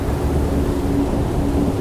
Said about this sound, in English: Her words were drowned out by another clap of thunder.